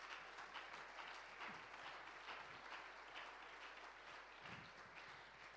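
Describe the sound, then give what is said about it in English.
A crowd applauds steadily, a dense wash of many hands clapping at once that holds at an even, fairly loud level for several seconds with no one speaking. “You should give yourself an applause.”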